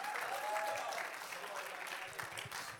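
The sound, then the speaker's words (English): An audience applauds in a steady, dense wash of clapping that stays fairly loud throughout, with a few faint voices mixed in beneath the claps. “Come on, let's give a round of applause.”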